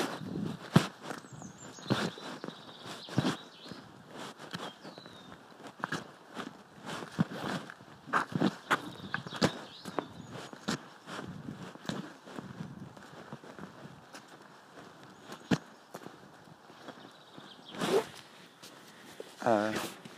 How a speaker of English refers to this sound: Horse in arena. Okay. And the open air arena.